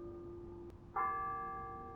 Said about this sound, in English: As she expounded upon this thesis, you heard the distant bells of the Warden College carillon.